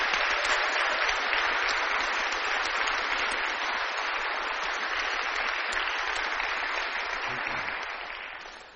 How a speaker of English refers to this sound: And I'm hoping right now we can just give them like a big round of applause for the time they've spent with each of us.